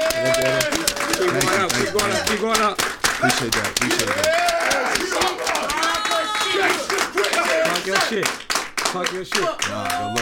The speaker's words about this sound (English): But, y'all, man, I want y'all to give a round of applause to ….